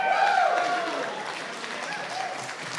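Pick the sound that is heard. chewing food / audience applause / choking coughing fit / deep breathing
audience applause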